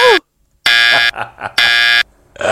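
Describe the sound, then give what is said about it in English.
A loud, harsh quiz-show buzzer blasts twice, each blare lasting about half a second with a rasping, steady tone, separated by a brief burst of voices, sounding after a wrong spelling of the word "maintenance". “Buzz her!”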